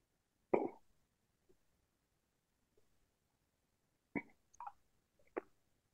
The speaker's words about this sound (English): Hang on while I get a few sips of water here.